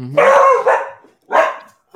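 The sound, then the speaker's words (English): A dog barks loudly and excitedly, a long drawn-out bark followed by a shorter one and the start of a third, with brief gaps of silence between them. “My dog's excited.”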